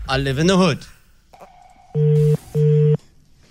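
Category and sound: signal or alarm, telephone ringing tone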